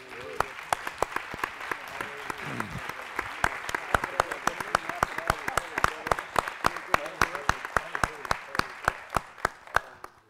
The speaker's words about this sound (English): Well, I believe that clap offering was for all of them.